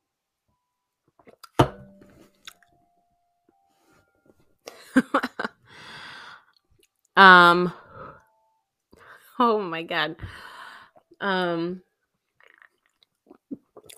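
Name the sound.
choking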